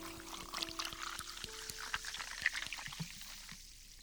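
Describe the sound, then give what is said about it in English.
A bartender tops off a drink, pouring steadily into a glass: a continuous splashing gurgle with a faint tone that climbs as the glass fills, then tapers into softer trickles and drips. “Oh, you want me to top you off before you go?”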